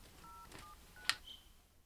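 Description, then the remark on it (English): A telephone number being dialed: a few short, quiet keypad tones beep one after another, broken by a sharp click, with no one speaking. “He dials.”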